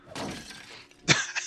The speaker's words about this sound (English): A lot of smashing of those statues.